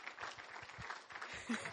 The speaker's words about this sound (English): Let's give Jane a round of applause. Thank you, Jane.